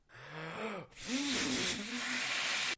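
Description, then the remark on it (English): Someone blowing up a balloon: two long, breathy pushes of air, a short one then a longer one, with a squeaky whining tone that bends up and down as the rubber stretches. “It looks like you're trying to blow up some balloons.”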